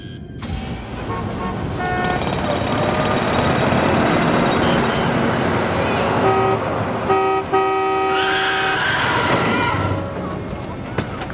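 Loud city traffic rumbles throughout while a taxi horn honks in about three short, steady blasts partway through, followed by a brief rising rush of engine noise, as a taxi cab strikes Sisko on an old-Earth street in Deep Space Nine.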